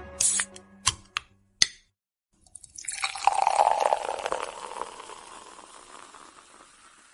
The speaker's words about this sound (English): I'm filling up my cup because I spilled it earlier.